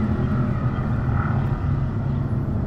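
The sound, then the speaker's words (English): A motorcycle engine drones steadily in the background, a low, continuous rumble holding at an even level for a few seconds with no voices over it. “Is that a motorcycle in the background right now?”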